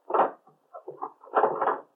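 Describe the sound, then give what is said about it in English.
A door thuds shut, followed by a few soft clicks and rattles, then a longer scraping clunk as the lock is worked. No one speaks. “Lock the door. All right.”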